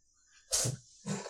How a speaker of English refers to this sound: We have cats, and we got one in here. His name's Cassiel, and he's having a bit of a sneezing fest.